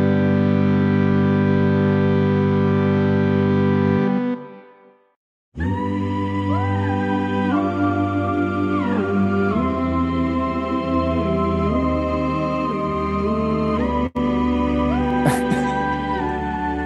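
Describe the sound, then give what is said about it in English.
A synthesized vocal choir sound from a MIDI keyboard holds a rich, loud chord, breaks off briefly, then returns with sustained chords that shift pitch, with no talking. “This is a MIDI keyboard. The vocal choir.”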